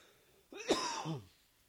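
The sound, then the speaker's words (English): A single raspy cough, almost like a throat clear, lasting under a second, from a person struggling with allergies, heard on its own against a quiet background with no talking. “I'm sorry I'm coughing, but still struggling with the allergies.”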